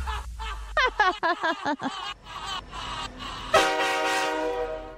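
A quick run of short, rising whistle-like toots gives way to a loud, sustained train horn blast with a rich, steady chord that holds to the end.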